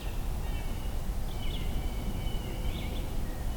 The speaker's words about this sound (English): And at the parking area, there's a hooded warbler. Weedy, weedy, weedio.